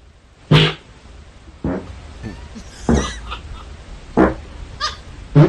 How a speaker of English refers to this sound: It's like the scales of farts. Is he running in his sleep? No, he's... He has such control. He's farting all night?